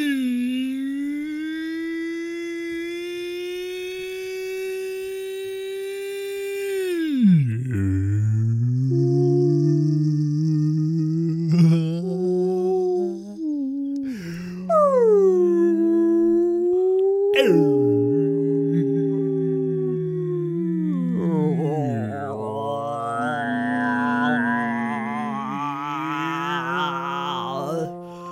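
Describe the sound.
A person imitates whale song with long, drawn-out moaning tones that swoop, dip and slide in pitch, wavering on for nearly half a minute, fairly loud.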